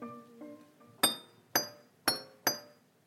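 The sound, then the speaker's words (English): A whisk strikes a glass in a steady rhythm, five bright ringing clinks about half a second apart, each with a sharp attack and a short shimmering decay. A few soft tonal notes come just before. Recorded in a bedroom and looped as the start of a song. “So the way that I made this song in my bedroom was that I started with me hitting a glass with a whisk.”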